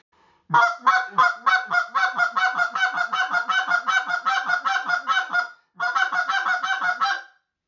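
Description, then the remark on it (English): A rapid, steady string of short goose clucks blown on a call, about two dozen sharp honking notes in quick rhythm, briefly pausing near the end before a final burst. “Now, the same thing on that, as you get going, you're going to learn to speed that up and do the same exercise as learning the cluck.”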